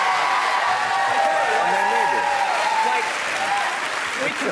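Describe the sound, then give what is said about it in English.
A crowd claps steadily and loudly for several seconds, with whoops and cheering voices rising through the dense wash of applause before it eases slightly near the end. “Everyone can feel good about themselves and clap”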